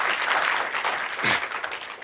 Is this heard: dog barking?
no